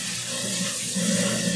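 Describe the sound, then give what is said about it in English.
A garbage disposal runs in a sink, a steady low motor hum mixed with rushing water, growing slightly louder and rougher partway through. No voices. “That's the garbage disposal.”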